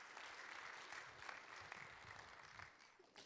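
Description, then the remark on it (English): A large crowd claps steadily to welcome a woman speaker, a dense wash of many hands applauding together at a consistent level throughout, with no voices standing out. “So give her applause with your big hands.”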